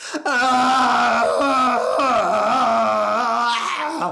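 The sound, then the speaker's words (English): A man lets out a long, loud, sustained scream of frustration, his voice strained and wavering for about four seconds before cutting off abruptly. “Screamed ….”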